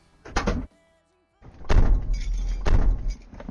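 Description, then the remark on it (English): A car's unlocked passenger door opens with a short clunk, then after a brief pause it swings shut with a heavy thunk followed by rustling and movement. “Passenger door's unlocked.”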